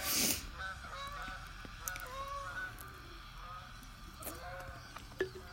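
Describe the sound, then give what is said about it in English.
Geese honk repeatedly as they fly by, a scattered chorus of nasal calls drifting past over a faint background rumble. “We got some geese rolling by.”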